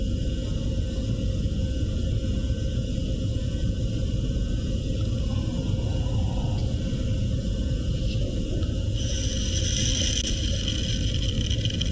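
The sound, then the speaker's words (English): A continuous, grainy rushing rattle like a rain stick, from a recording being played back, runs the whole time, dense and steady, with a brighter, crackling hiss rising over it toward the end. No one speaks. “Sounds just like a rain stick.”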